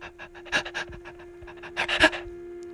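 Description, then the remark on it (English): Heavy, rapid breathing in quick huffing bursts, fairly loud, heard at night in a house as someone is about to go to sleep, with no one talking, like a panting rhythm that speeds up and swells toward the end. “One night, she was out working again, and I was just about to go to sleep when I heard this breathing.”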